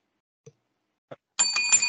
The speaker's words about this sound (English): All right, so you're in the ring now. You're waiting for the bell to ring.